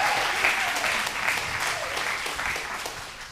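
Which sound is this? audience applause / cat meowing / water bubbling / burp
audience applause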